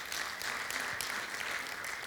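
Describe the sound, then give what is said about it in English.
Steady audience applause fills the whole stretch, a dense, even wash of many hands clapping at a moderate, constant level, with no voices standing out above it. “Yeah, you can give him a good round of applause.”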